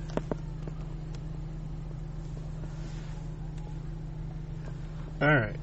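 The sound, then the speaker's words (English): Steady low engine rumble of cars driving by on a road while children are kept out of the road, with faint background noise and a brief voice calling out near the end. “Sorry, we're just making sure the The children are out of the road while cars are driving by.”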